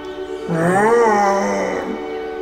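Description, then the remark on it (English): An elephant's mating call: a single drawn-out, low groaning tone, rich in harmonics, that swells, bends slightly upward, then sinks and fades over a steady background hum. “Listen again closely as the elephant calls for its helpmeet.”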